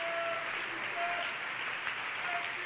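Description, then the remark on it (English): An audience claps together to praise the Lord in sustained, dense applause for a few seconds, a steady wash of many hands, with faint voices mixed in. “And can we clap our hands and praise the Lord one more time?”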